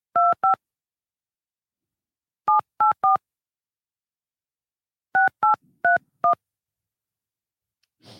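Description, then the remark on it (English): A phone number is keyed in on a touch-tone phone to call Matt Sousa: about nine clear, beeping dual-tone presses in quick bursts of two, three and four, with pauses between groups and no voices. “He probably isn't going to recognize this number either.”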